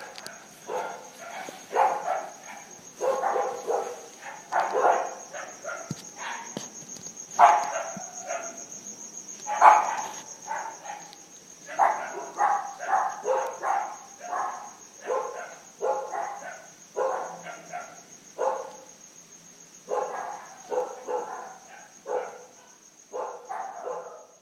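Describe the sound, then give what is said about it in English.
About half a dozen neighborhood dogs in Bolivia bark back and forth at night in dense, overlapping volleys, while crickets keep up a steady high-pitched drone underneath. “Every night, same thing, the same, excuse me, same half a dozen dogs in the neighborhood getting into it.”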